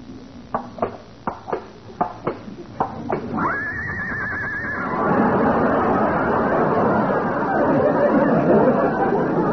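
animal, horse neighing and whinnying

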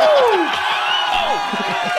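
crowd, crowd cheering

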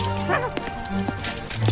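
animal, dog barking

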